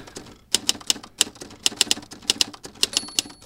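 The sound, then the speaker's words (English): Mechanical typewriter keys clack in an irregular, fairly quick rhythm, each strike sharp, with a faint metallic ring near the end and no voices. “And this is what they use typewriters.”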